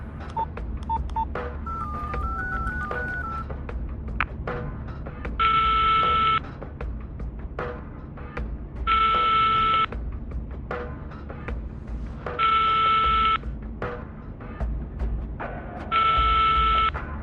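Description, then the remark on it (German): Mobile phone dialing tones as the second number on the call list is dialed: a few short electronic beeps, then four steady one-second tones repeating at regular intervals over a quiet background hum, clear, with no talking. “Wo ist dein Handy? In der Hemdtasche? Gut. Welche Nummer? Die zweite auf der Anrufliste.”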